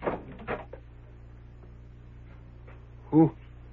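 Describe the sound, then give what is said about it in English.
A door swings open with one short, loud creak near the end, after a couple of faint knocks on the door at the start. “Well, stop your knocking and come in. Come in, the door's open.”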